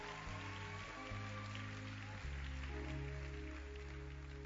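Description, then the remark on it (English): A church audience clapping in a dense, steady patter that runs throughout, with sustained low musical tones droning and shifting pitch underneath. No one speaks. “I like the way you're clapping.”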